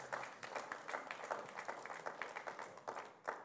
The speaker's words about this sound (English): If you're female this morning and God has called you to be a stay-at-home mom and a wife, good for you. Ladies, yeah, come on, you can applaud that.